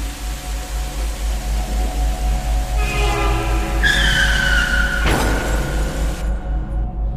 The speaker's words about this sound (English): without a warning, a truck's horn was the last thing Ashok ever heard